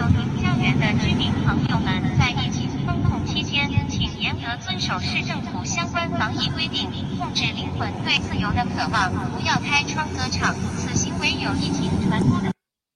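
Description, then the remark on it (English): A steady, droning engine hum of surveillance drones fills the air overhead in China, continuous for the whole stretch, while many people trying to get supplies shout and call out over it, some sounding distressed. “Release the drones.”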